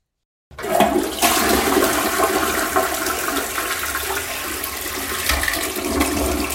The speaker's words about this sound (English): I tried to flush an egg down the toilet. I got it out of the fridge and was like, I wonder if my toilet could suck this sucker down. So I put it in, and I pressed the flusher handle down, and also there was pee in with it